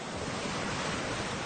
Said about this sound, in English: Then, it's time to paddle out. But there's no waves to push through like in ocean surfing. There's just the one on the horizon. It's barely visible, but you can hear it.